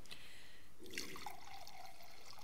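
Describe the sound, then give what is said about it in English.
Wine trickles and splashes into a cup in a short, quiet pour, the gurgling pitch rising slightly as the vessel fills, with no voices present. “he poured the wine.”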